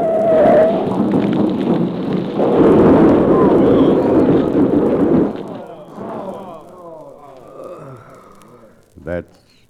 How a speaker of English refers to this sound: That's the end of her. Yeah, what an awful way to end. Smashed up in the wreck of a flaming freight car.